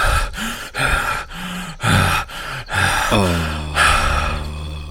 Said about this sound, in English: sits straight up in her sleeping bag. And she's breathing, panting.